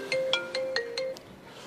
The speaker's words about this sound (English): there's my phone again, sorry.